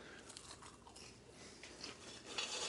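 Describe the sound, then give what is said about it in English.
Steady crunchy chewing of microwave butter popcorn, a continuous run of crisp, bright crackles and moist mouth sounds with no talking, growing a little louder and sharper toward the end. “Live, there's nothing I can do about chewing.”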